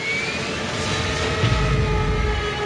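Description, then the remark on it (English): A loud, steady airplane engine drone with a sustained whine on top, swelling slightly heavier in the low rumble partway through, from a plane carrying French and British military personnel off the coast of Spain in September 1942, before it crashed. No voices, just the continuous roar. “In September of 1942, a plane carrying French and British military really did crash off the coast of Spain, killing everyone on board.”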